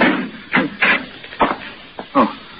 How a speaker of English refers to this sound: I rang the buzzer and pounded on the door